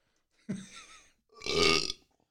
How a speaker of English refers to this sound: That is the most disgusting burp I've ever had in my life.